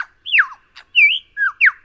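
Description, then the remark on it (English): A superb lyrebird mimicking other birds: a quick run of five varied, loud whistled notes, swooping downward and rising in turn, with a short buzzy chirp between them, with no voices. “The source of the echo is the birdsong chameleon, known as the superb lyrebird.”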